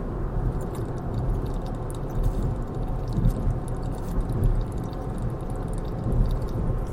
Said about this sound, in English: I'm going to take a water break. You can take a drink break. And whatever you're having, enjoy. Salute, l'chaim, hallelujah, and here's to you. All right, I'm drinking water. I'll be right back. You're going to hear me drinking.